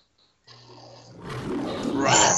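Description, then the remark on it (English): A lion roars loudly, swelling from a low rumbling growl into a harsh, full-throated bellow that grows louder toward the end, with a brief faint tone beforehand, in the American International film studio logo at the start of a 1979 film. “Someone pull that lion tail.”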